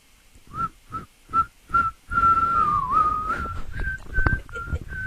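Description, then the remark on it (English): A person whistles the hymn tune "Onward Christian Soldiers", starting with four short separate notes and then moving into longer, sustained wavering notes over a steady breathy background. “It's hard to whistle "Onward Christian Soldiers."”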